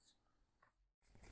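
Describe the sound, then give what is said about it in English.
Soft papery rustling of a deck of cards being shuffled, briefly cut by a split-second gap before a louder flurry of card riffling; no one speaks. “Okay, I shuffle for you.”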